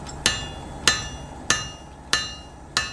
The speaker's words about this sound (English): He's making a tarasca, the Gaelic name for a peat iron, the heavy-bladed pole used to cut peat. The hammering is hardening the metal. It's making the blade rigid.